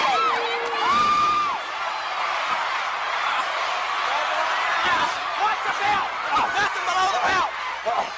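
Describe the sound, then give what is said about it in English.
A professional wrestling crowd roars and cheers continuously as Kerry Von Erich holds Flair in the iron claw, with high whoops and shouts rising above a dense, loud wall of voices, plus a few sharp bangs near the end. “Look at this crowd, listen to them.”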